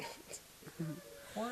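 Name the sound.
dog howling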